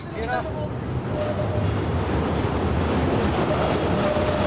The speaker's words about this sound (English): The train. A little bit of the CTA here coming in first before we hear Studs.